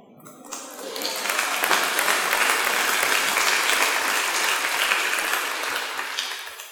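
tepid audience clapping

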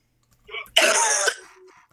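cough

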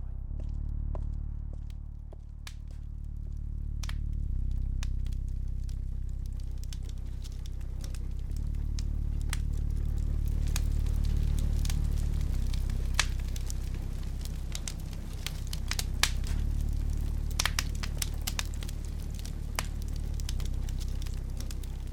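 fireplace fire crackling

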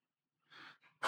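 sneeze

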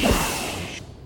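whoosh transition sound effect

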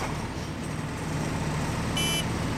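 city traffic noise

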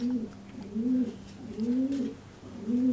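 pigeons cooing

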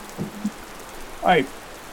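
rain falling

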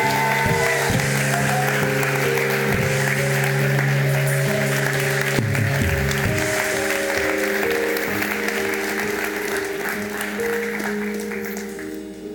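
audience clapping

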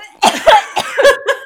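coughing

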